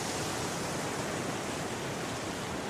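Storms and gale winds at sea, pushing the ship Princess Augusta north and far off course, make a steady, dense roar of waves and wind that fills the whole stretch without pause or distinct breaks, loud, with no voices.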